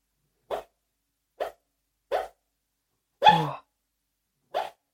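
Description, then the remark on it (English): A sleeping female dog, dreaming, lets out five short, muffled woofs, irregularly spaced, with one longer, whimpering yowl near the end; no one speaks. “My dog's having a dream and she's like full on talking in her sleep.”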